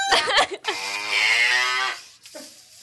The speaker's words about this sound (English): And there might be a few cows.